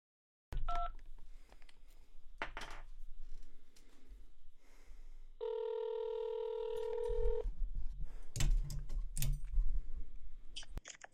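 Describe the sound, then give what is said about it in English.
A short two-pitch telephone keypad beep sounds early, followed by clicks and handling noises, then a steady electronic dialing tone holds for about two seconds before more sharp clicks. “Beep, beep, beep. Yeah, there's programs that can figure out what the numbers are.”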